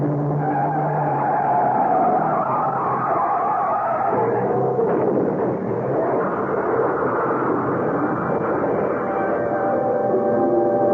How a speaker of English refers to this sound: Must have lost consciousness when the truck hit us.